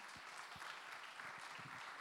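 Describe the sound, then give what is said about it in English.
A church gathering applauds together to thank everyone who serves, a dense, steady patter of many hands clapping at moderate loudness throughout, with no voices standing out. “But I would just like to show appreciation just by a big hand of applause to everyone who serves.”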